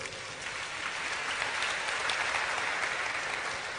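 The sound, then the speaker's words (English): A crowd applauds steadily, a dense wash of many hands clapping at once, sustained and fairly loud throughout with no voices standing out. “Clap for yourselves.”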